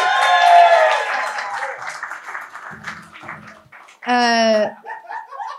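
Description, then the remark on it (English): An audience breaks into applause mixed with laughter and cheering, including a loud whoop near the end, the crowd noise steady for several seconds. “Big round of applause, please.”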